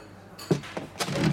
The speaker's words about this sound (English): My eyes fly open. There's a man sitting at my table. The sound of the chair startled me,